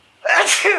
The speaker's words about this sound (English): I'm going to sneeze.